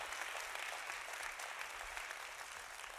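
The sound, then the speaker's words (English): A church audience claps steadily during a service, a dense, continuous wash of many hands with no single claps standing out, sustained at an even loudness for the whole stretch. “Oh, come on, somebody clap like God's been good to you.”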